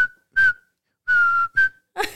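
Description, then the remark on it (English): A person whistles a short, bright tune, a few clear notes in quick bursts with brief pauses between them, ending with a breathy rush of air. “But I don't know where and what point it turned into like a whistle. So I would always do that.”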